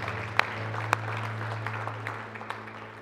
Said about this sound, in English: Can we give these that made that decision a hand clap? Praise be to God.